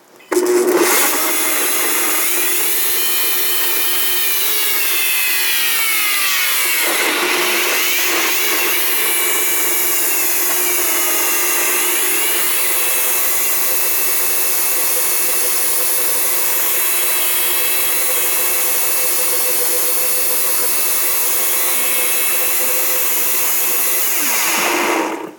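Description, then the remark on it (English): A blender runs on its smoothie setting with cold water added, loudly and steadily for about twenty-five seconds, its motor a constant high whir with pitch shifts and sweeping tones as the contents churn, then cuts off abruptly. “smoothie setting, a smoothie setting, but I often like the one that makes things even colder because I want it to make it even colder because I put the water in although it was cold.”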